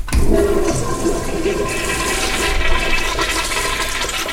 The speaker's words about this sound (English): And of course, this last part is very nice, so you can flush the toilet.